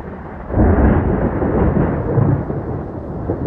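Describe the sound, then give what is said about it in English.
A loud thunderstorm sound effect swells in after a brief lead-in, a dense low roar of thunder that rolls on steadily for several seconds with no voices. “because I said The Quiet Storm, I am contractually obligated to do this”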